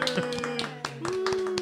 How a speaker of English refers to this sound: Let's give a warm 10th Street welcome to Madame Mattery's Marvelous Misfits. Applause now, peons.